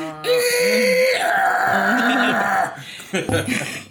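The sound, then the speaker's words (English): A voice mimics an AOL dial-up modem handshake: sustained screeching tones, warbling pitch sweeps and harsh buzzy hiss for about three seconds, ending in choppy bursts and a brief laugh. “That's my best modem noise.”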